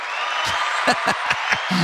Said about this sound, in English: That might be the first time I've ever gotten the applause. Wow. I feel like you deserve it.